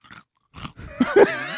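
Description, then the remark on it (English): Loud, crisp crunching bites of a snack, two sharp bursts followed by a sustained, wheezy, tonal voiced sound as the chewing continues. No speech. “Like a horse eating an apple.”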